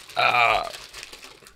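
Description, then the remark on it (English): A crinkly packet of South African chips rustles in one brief, loud burst, then settles into faint, scattered crackles that fade over the next second. “Sorry, I was just a little rustling.”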